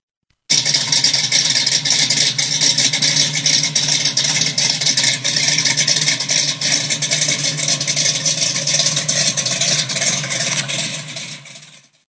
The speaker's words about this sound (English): You can hear this Hemi rumble. So here we go. Enjoy the easy listening sounds of a 426 Hemi.